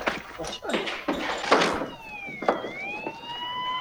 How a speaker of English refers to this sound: What is that? It's another paramedic ambulance.